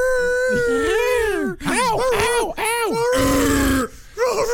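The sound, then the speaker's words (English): A human voice loudly imitates a werewolf howl: a long wavering howl sliding up and down, followed by several shorter rising and falling howls and growly groans. “I got a new dog for you. I love... That's not a dog.”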